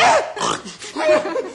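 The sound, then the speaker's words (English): A person imitates a horse whinny with a short, wavering, nasal vocal trill broken into a few quick pulses, fairly loud, with no other talk. “See, I'm a horse.”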